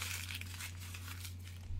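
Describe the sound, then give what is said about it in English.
Blank, unwritten paper from a spiral notebook being crumpled up, a continuous dense crinkling and crackling for a couple of seconds, with a low steady hum underneath and no talking. “This is a good paper that was in this spiral. But just imagine me doing this.”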